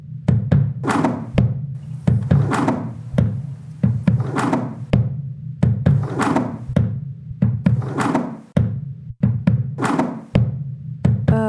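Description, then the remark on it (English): A sliding door, used as the backbeat of a music track, gives thuds and rattles that repeat in a steady rhythmic pattern, sharp knocking hits over a continuous low droning hum, with no voices. “Was it the sliding door next? This backbeat that goes along with it?”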